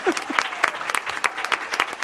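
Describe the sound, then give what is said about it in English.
An audience applauds the Brookwood Elementary team Good Vibrations, a top 20 Battle of the Brains finalist, steadily, with dense overlapping claps filling the short moment at moderate loudness and no speech over it. “Yeah, you clap for them. Go ahead.”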